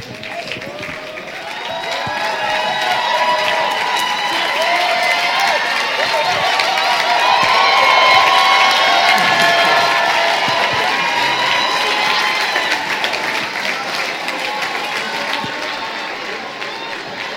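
A crowd breaks into sustained applause and cheering, with dense clapping and scattered shouts swelling over the first few seconds, holding steady, then easing slightly toward the end.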